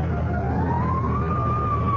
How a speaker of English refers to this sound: Fire engine? Look at the smoke. Oh, my God.